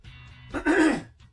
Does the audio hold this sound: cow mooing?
no